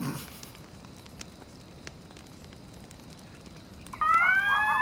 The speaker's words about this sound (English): A coyote scream. Oh, look, it's a coyote scream. Coyote.